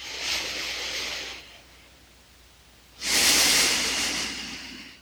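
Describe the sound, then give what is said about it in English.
A slow breath cycle during a breathing practice, a soft airy inhale through the nose, a pause, then a fuller, louder exhale through the mouth, with no talking. “And begin breathing in your nose and out your mouth.”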